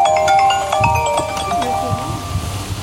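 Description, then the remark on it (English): A burial sanctuary worker's mobile phone rings with a bright, electronic melody of quick repeated notes, clear, playing steadily for a few seconds over a low background rumble. “Caroline's phone rings a lot.”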